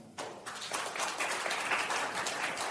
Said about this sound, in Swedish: Det var bara hälften som klappade.